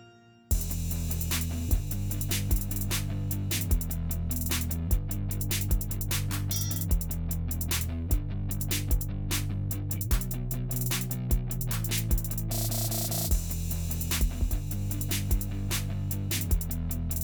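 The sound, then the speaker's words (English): An instrumental intro tune plays after a brief moment of quiet: a steady, driving beat with a prominent bass line shifting between notes and bright, dense cymbal wash over the top, with no voices. “Let's play the intro music now. Jam out to the intro music.”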